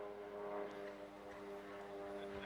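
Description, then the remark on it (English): A plane's steady engine drone with strong humming harmonics holds at a constant level throughout, like a propeller aircraft passing overhead, with no voices present. “Now, this verse is too important for me to let that plane take it away, okay?”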